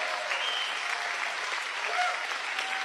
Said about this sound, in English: Now, are y'all clapping because that is...